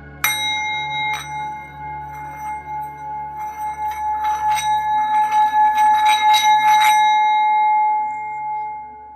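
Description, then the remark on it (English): A sound bowl rings with a steady, sustained metallic tone, struck twice near the start and then tapped or rubbed in a quick cluster, its shimmering hum lingering loud with no voices. “To cleanse energetically, you can use sound bowls.”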